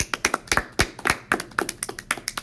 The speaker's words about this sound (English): Bet you can't guess what we're going to talk about. Sports! Woo! Woo! Applause sound.